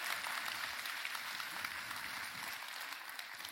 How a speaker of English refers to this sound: Oh, we want to clap. Just go ahead. The balcony wants to clap.